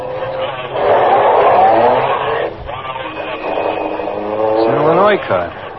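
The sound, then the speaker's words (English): A car engine revs up and pulls away from a traffic light as it changes, its loud roar climbing in pitch over several seconds with a second surge of acceleration near the end. “When the light changes, take off behind them.”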